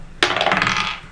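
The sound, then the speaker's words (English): A twenty-sided die (d20), rolled for a longbow attack, clatters onto a table with a sharp hard hit, then tumbles in a quick run of bright rattling ticks for about a second, with no voices. “So I'll roll a d20.”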